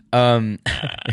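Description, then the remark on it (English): A single loud, drawn-out burp lasting under half a second, resonant, made away from the microphone, followed right away by a person talking. “Oh, this time you decided to burp not on the mic?”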